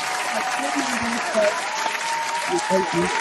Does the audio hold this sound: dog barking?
no